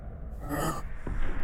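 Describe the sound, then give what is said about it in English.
An emaciated man strapped to belts and tubes gives a sharp gasping breath, followed by ragged, heavy breathing with no voices. The breaths sound strained and uneven. “His eyes are darting back and forth, his breathing ragged and heavy.”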